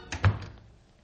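A house door swings shut with a single solid thunk as someone leaves, moderately loud, preceded by a brief latch rattle and followed by a short fading tail. No voices.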